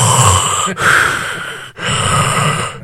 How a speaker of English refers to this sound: Are you behind a mask? Because I hear a lot of heavy breathing.